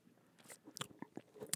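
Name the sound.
sipping hot coffee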